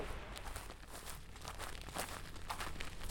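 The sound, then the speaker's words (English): Footsteps crunching through dry grass while walking across a field, a steady crackling hiss like static, with brighter crunches recurring in an even walking rhythm. No voices. “The sounds of dry grass crunching beneath your feet sounds like static as you walk across the field.”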